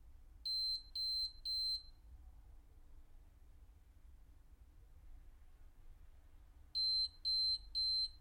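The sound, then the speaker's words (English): A refrigerator's door-open alarm, set off after about 30 seconds with the door open, sounds in two bursts of three high-pitched electronic beeps each, several seconds apart, over a low steady hum with no one talking. “And after like 30 seconds, it's gonna go beep because the door is open.”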